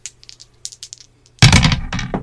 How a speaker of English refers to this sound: if you want to roll the dice to see what we get.